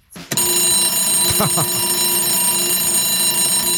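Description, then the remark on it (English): An old-fashioned mechanical alarm clock bell rings loudly and continuously, a harsh metallic clatter starting abruptly and never letting up, with a brief voice murmuring underneath early on. “Old, tried and true, actual alarm clock.”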